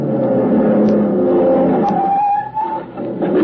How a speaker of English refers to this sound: They were racing in a low, cut-down blue car. The frame had looked familiar as it whizzed by me.